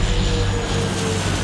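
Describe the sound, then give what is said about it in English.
A loud, steady drone of Japanese propeller warplane engines on a direct course to attack Pearl Harbor: a continuous low throbbing roar with no voices, as if aircraft are passing overhead. “The planes were Japanese, and they were on a direct course to attack Pearl Harbor.”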